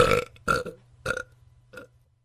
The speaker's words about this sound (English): Okay, phones are not allowed, but burping is okay at the table. Yo, I thought you weren't enjoying that biryani, Ma, but that burp said something else, eh?